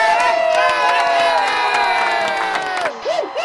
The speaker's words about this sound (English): And just as that rousing cheer echoes throughout the gymnasium, the door opens.